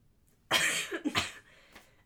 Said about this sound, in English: You can cough. Do not hold it in. No, it's so loud. It's fine. We warned them. So annoying. It's not. It's fine. It's okay. Y'all, get over it. Y'all, I have a cold and I have asthma, so.